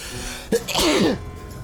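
A single loud sneeze: a quick sharp intake followed by a forceful, breathy burst that trails off quickly into quiet.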